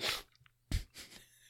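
A sneeze, a sudden breathy burst followed moments later by another sharp explosive puff and a short trailing exhale, fairly quiet with no talking around it.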